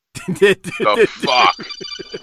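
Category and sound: signal or alarm, mobile phone ringing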